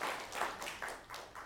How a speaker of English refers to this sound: can we give a round of applause to people that teach kids? I mean, my gosh.